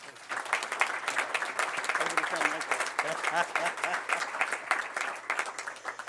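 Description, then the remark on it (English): Steady audience applause after New York State Senator Tim Kennedy is introduced, filling the whole clip, a dense patter of many hands clapping at a fairly even level, with some voices mixed in underneath. “Can we give him another round of applause for his advocacy?”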